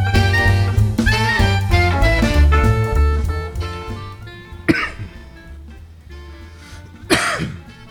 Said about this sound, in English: You have a little cough? Yeah, a little bit. Oh, cool. Well, that's a good way to start the show. I thought I'd get it all out before the show started.